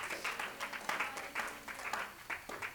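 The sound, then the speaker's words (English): An audience at True Tabernacle claps hands together in praise to God, a dense stream of crisp overlapping claps with louder bursts pulsing roughly every half second, steady and energetic throughout. “Come on, clap your hands one more time to God.”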